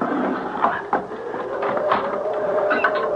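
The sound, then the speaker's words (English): A wooden bolt scrapes and knocks as it slides back, followed by a drawn-out, wavering creak of a door swinging open, with a few sharp clunks along the way. No one speaks. “All I have to do is pull the wooden bolt back, and the door will open.”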